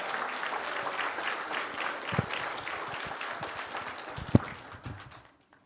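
A church audience claps in praise of God, a dense, steady wash of many hands with a few sharper claps standing out near the end before it stops abruptly.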